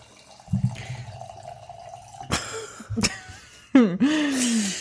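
Cheap wine is poured into a glass, with a couple of sharp clinks followed by a gurgling stream whose pitch rises as the glass fills. No one speaks.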